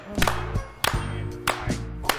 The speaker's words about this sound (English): I just need a slow clap.